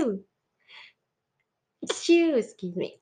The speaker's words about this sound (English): And I'm going to sneeze.